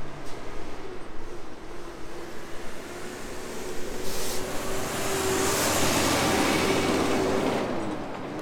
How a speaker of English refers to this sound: Man, it's a busy truck day in this corner. Very busy location. Very, very, very, very busy. Busier than you realize. This is Table Mesa and Foothills Parkway.